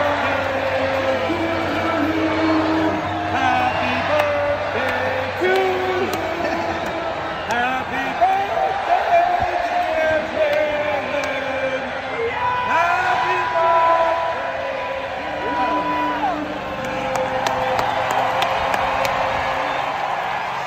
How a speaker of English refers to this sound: And I just kind of was reminded that it was Jalen's birthday. So I wondered if the crowd would like to wish him a happy birthday. And this is what they did. Happy birthday.